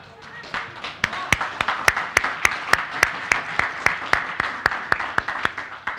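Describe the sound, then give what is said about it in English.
An audience claps in a steady, even rhythm, sharp crisp slaps about four per second, beginning after a second of low murmur and continuing loudly over a background hiss of crowd noise. “Something else for you to clap about is another piece of good news I got this morning.”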